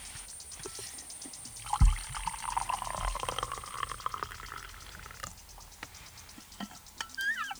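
A man pours his twelfth cup of coffee of the morning into a cup: a light knock, then a steady trickling stream for a couple of seconds, followed by soft clinks and faint rustling. No one speaks.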